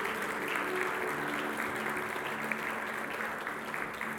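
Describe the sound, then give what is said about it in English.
An audience at a worship service applauds the worship team steadily, a dense wash of many hands clapping at once that holds at an even, moderate level throughout the whole stretch, with faint murmurs underneath. “Let's give the worship team a great big hand clap.”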